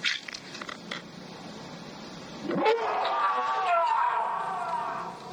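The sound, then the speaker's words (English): A bear roars in a Robert Redford film: after a couple of seconds of faint crackling, a loud, rough, sustained roar swells up and holds for about two and a half seconds before easing off. “Have you guys ever heard a bear roar from Robert Redford that loud before?”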